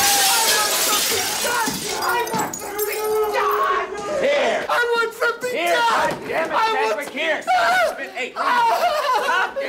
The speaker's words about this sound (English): All right, so Nicholson just shattered through the window to grab his cigarettes, which the door slides open. He could have just slid it open.